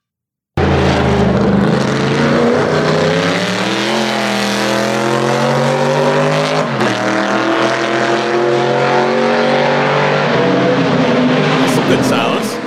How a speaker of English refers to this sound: engine was first built in Windsor, Ontario, appropriately becoming known as the Windsor motor. Windsor V8.